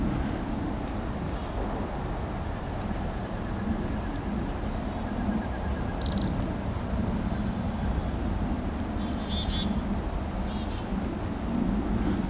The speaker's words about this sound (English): Be fairly surrounded by chickadees here. This is good. If it's a safe spot for chickadee, then other species think it's a safe spot for them too.